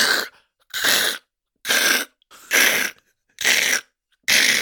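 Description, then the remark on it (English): A voice imitates an Amazon delivery truck's reversing warning: six harsh, breathy, noisy bursts repeated in a steady, even rhythm, each about half a second long, loud and with no words. “Because, bitch, when those trucks back up, what is that noise?”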